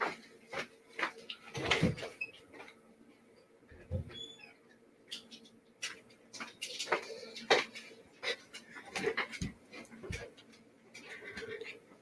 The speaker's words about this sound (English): Sorry, had to let the dog in before she got absolutely nuts out there.